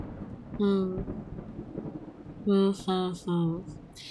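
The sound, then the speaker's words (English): Steady rain hisses softly throughout, while a few short, loud tonal calls or vocal sounds rise above it, one early and three in quick succession near the end. “Who knows when rain will disappear?”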